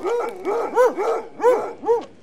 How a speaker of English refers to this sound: I'm getting reports done, Inspector. Why is the General's hounds in here jumping over me?